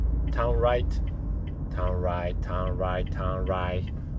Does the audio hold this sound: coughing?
no